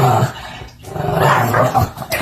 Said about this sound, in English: That's him playing with the rope. That's his tug of war play growl.